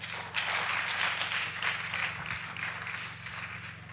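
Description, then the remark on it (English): A crowd applauds with dense, steady clapping that carries through the whole clip, easing off slightly toward the end, over a low, constant hum. “Clap for yourself.”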